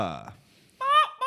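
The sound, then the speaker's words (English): A person imitates a woman in New York, near Chinatown, who acted like a squawking bird, with three loud, nasal, honking cries, the first falling in pitch, then a pause before two more harsh squawks. “She thought she was a bird or something. She was just going, squaw, squaw, squaw.”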